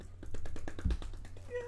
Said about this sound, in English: My boy, I ain't even know that was a clap.